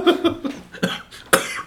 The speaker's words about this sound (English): Oh my gosh. Got me. That was so funny, I coughed.